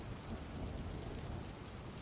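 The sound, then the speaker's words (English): Steady rainfall hisses evenly throughout, with a low, continuous rumble of distant thunder underneath, lightning off in the distance and the storm coming closer over a beach. The storm sounds fairly quiet and far off, and no one speaks. “You can see the lightning off in the distance, the storm coming closer, getting to ground you.”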